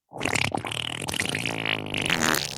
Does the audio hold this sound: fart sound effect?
yes